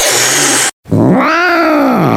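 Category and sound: animal, cat yowling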